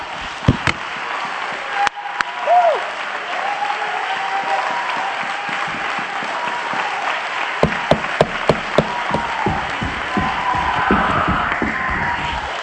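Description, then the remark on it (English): A crowd claps loudly and continuously, a dense wash of applause with sharp, distinct hand claps standing out near the end, and some faint voices and cheering mixed in. “Yeah, I wish you clap your hands and help.”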